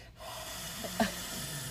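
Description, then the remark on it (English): A forceful, breathy exhale pushed out hard through the nose or mouth during a face stretching exercise, fairly loud, with a short sharp burst near the end and no talking. “I've also started doing them in the shower because a lot of it's breathing”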